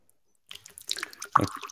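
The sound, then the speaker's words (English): Liquid splashes and trickles as someone pours another drink, with wet dribbling sounds building up before one sharp, loud drip or plop near the end. No one speaks. “What is that? Someone's pouring another one.”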